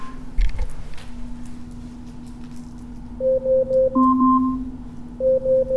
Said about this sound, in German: Ja, das ist der Timer, den wir gestellt haben.